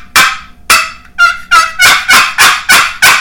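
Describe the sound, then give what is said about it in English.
A turkey call worked by dragging to make a purr: about eight loud, raspy, rolling notes in quick steady succession, with no talking. “Your purr. Yeah. You just drag it. Oh, that's a nice purr.”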